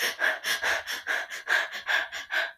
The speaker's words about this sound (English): What would you think if you saw a woman breathing long, slow breaths in and out? You'd probably think she was calm. Breathing that way would make you feel calm, wouldn't it? What about if you saw another woman breathing short, rapid breaths?